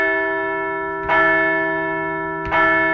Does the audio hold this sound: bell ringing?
yes